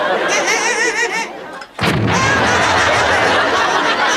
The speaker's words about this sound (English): Now, I haven't seen anyone enjoy an explosion on The Muppet Show this much since Gene Stapleton.